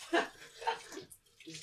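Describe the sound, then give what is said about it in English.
Water gushes from a sink tap whose neck has just been ripped off, splashing in uneven surges over a couple of seconds, with a brief stretch of quieter flow and faint voice sounds mixed in. “The sink, you just ripped off the neck of the sink!”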